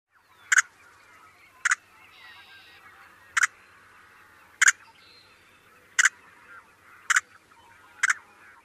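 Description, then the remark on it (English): A yellow-headed blackbird gives seven short, sharp check calls, each a little longer and almost two-syllabled, at a steady pace of roughly one every second or so, loud, over faint background chatter from other birds. “Their most common call is a check call.”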